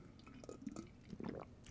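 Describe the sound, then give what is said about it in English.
A quiet sip from a drink: a few soft wet slurps and mouth clicks, then a swallow, with no talking. “Let me take a sip.”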